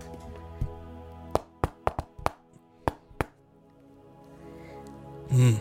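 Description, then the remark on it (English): A rhythmic secret knock pattern: about seven or eight sharp raps in an uneven sequence, some quick pairs and some spaced out, followed by a short pause and a brief loud voiced sound at the end. “Maybe we should have a secret knock, like, you know, so that if you don't know, you know, the chest gets open and nobody's knocking, I'll just come out axe swinging.”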